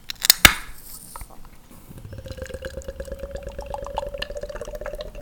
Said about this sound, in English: Oh. Sounds meaty. It's a thick pour.